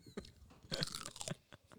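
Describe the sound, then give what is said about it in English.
Crisp crunching as someone bites into and chews a crunchy snack, a dense burst of crackly chews in the middle with a few softer bites around it. “It's a very satisfying crunch.”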